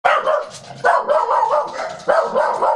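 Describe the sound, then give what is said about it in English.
Dogs barking excitedly in repeated, overlapping bursts, loud, with a few sharp onsets and continuous yapping throughout and no talking. “and you're like, no, my dogs are just going crazy.”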